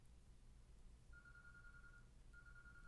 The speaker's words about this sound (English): Hold on, there's a phone going off. Do you hear it? Hold on, let's hear it.